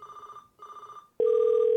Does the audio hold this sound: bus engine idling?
no